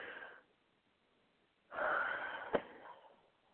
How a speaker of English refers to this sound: Sorry, I yawned and then I lost my place.